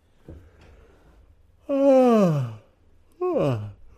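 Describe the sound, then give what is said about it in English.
A long, drawn-out yawn with a breathy voiced sound that slides downward in pitch, followed by a shorter, sighing yawn-like exhale, both fairly loud with no talking. “Twas a good yawn. Oh, twas a very good yawn.”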